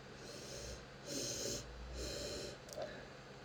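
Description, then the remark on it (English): Two long, breathy sniffs as someone noses the aroma of a Russian sparkling wine, with a brief faint click near the end and no talking. “I just hope I'm not breathing in chlorine or anything and the Russians haven't, put some Novocaine in here.”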